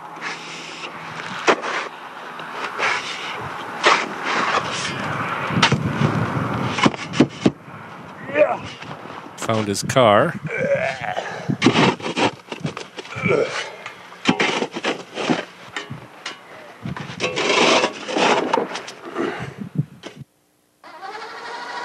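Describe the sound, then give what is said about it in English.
Someone shoveling snow: a series of rough, raspy scrapes and thumps in an uneven rhythm, fairly loud throughout, with a few brief spoken words in between. “Shoveling snow, if you haven't noticed, or if you don't know that sound.”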